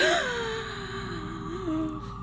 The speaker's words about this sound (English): I gasped, he had two arms!